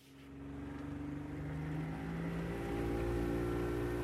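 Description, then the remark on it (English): A motorboat heading out into a bay drones steadily with a low, throbbing engine hum that builds as the boat pulls away, with water and wind noise beneath and no one speaking. “The boat heads out into the bay.”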